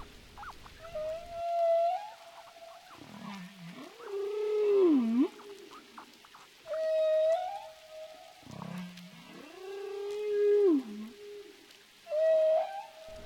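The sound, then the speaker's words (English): Humpback whale song echoes underwater in a repeating pattern: high sustained tones alternating with low, swooping groans, each phrase separated by brief pauses, with faint crackling water noise throughout. “Everything about humpback whales is awe-inspiring.”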